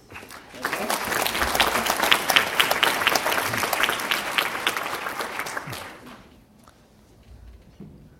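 A crowd applauds steadily for about six seconds, a dense wash of many clapping hands that then fades out, leaving quiet room tone with faint murmurs.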